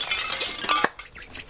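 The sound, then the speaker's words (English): A window pane shatters as a hand goes through it, a bright burst of clinking, tinkling glass fragments, followed by a few scattered chimes of pieces settling, with no voices. “Sound of shattering glass.”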